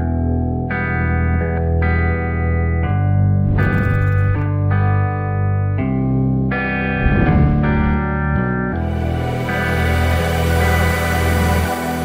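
A pop song with female vocals plays alone, with loud sustained chords over a heavy, steady bass and a processed, effect-laden sound, shifting chords every second or two.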